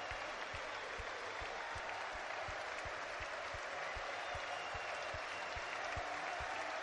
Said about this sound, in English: Mario Lemina getting applause as well.